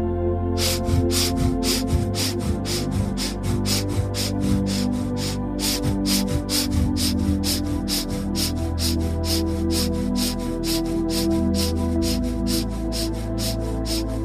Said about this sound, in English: All right, now hands up, our last set of 10, breathing.